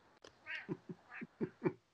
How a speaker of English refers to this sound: In fact, your cat in the background almost sounded like a crow.